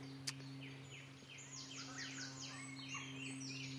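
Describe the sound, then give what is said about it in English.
A woodpecker calls in a quick series of repeated, descending notes in a small hazel, ash and sycamore woodland with a little stream, fairly clear against a soft bird chorus and a steady low hum, with one sharp click near the start. “There's a woodpecker.”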